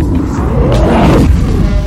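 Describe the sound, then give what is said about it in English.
A man's voice imitates an angry troll's roar and snarl, a loud, low, gravelly growl sustained for about two seconds with rough, rumbling texture and no words. “He roars and snarls at you.”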